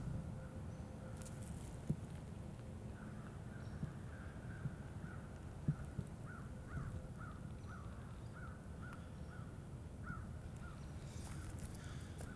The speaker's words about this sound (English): Okay, so what's happening is you hear those crows? They're going nuts. You know why they're going nuts? Because up above are turkey vultures circling. Actually, they're, yeah, black vultures.